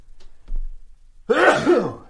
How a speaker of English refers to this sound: I'm going to sneeze. Hang on a second.